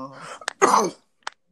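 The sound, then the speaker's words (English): A harsh cough: a quick throaty burst, a longer rough hack, then a short final cough after a pause. Some low murmuring can be heard just before it. “Was that a bark? That was a cough”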